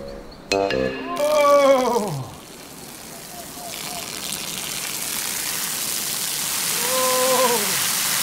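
A steady, hissing stream of urine splashes continuously for several seconds, growing slightly stronger, while a man lets out drawn-out groans of relief at the start and again near the end.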